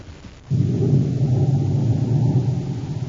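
A deep, sustained roll of thunder from a violent storm breaks in abruptly after a brief quiet moment, then rumbles on loudly, continuously and heavily, with no voices present.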